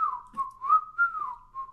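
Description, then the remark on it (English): A person whistles a wolf whistle, a single fairly steady tone that wavers slightly in pitch for under two seconds, with no talking. “The wolf whistle.”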